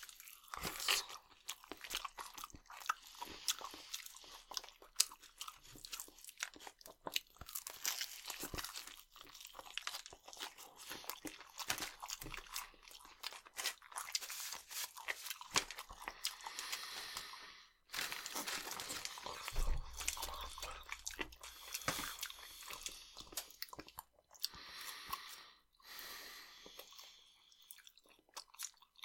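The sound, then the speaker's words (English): Loud, crisp crunching and chewing of crispy fried chicken skin, with dense, irregular crackling bites repeating throughout and no talking. “Yeah, some dedicated Cripsy skin pieces.”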